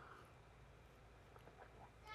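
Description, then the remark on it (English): A few short, rooster-like clucks from a bird come through faintly over a steady low rumble, with a brighter call rising right at the end. “Yeah, bird.”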